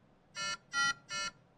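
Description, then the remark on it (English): Three evenly spaced electronic alarm beeps from a Nautilus Smart ECMO oxygenator module's gas flow alert, sounding because the oxygen gas flow has been disrupted, each a bright harmonic tone about a quarter second long, sounding clearly with no talking. “The module gives you audio and visual alerts when alarm limits have been exceeded. Here, the oxygen gas flow has been disrupted.”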